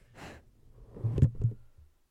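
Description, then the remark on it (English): A woman, the film character Tree, pants heavily in a film: a breathy inhale, then a short run of strained, voiced gasps, with no talking around them. “Tree panting.”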